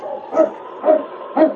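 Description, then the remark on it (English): A husky dog named King barks three times in steady succession, each bark short, with a faint background hum between them and no voices. “Hello, you husky.”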